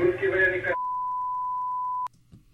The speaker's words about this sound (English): put that long beep in there on purpose to add the whole dramatic to it. When they're talking about, and his last words, then they put that long beep in there. Their last words? Like flatline.